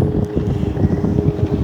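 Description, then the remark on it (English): A jet ski engine drones steadily with a low, rumbling churn and a faint steady whine, mixed with wind buffeting the microphone; no voices. “That's a jet ski passing by.”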